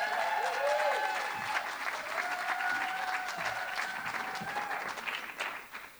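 A crowd applauds steadily for about six seconds to welcome a performer to the stage, a dense wash of clapping with some whoops and cheers, tapering off slightly at the end.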